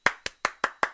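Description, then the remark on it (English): Rhythmic hand clapping from a song used in the film Don't Torture a Duckling: five crisp, loud claps in a steady, quick beat, each sharp and bright, with nothing else audible between them and no voices. “It's the clapping.”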